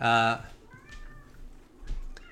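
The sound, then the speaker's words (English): A cat coming down lets out a loud meow right at the start, followed by a softer, drawn-out mewing sound and faint rustling in the background. “And the cat's coming down.”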